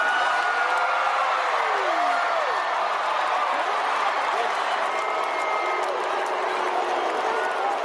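A huge concert crowd roars continuously, with many voices stretching out a long, low chant of a name over the dense cheering. Loud and steady throughout, with no pause.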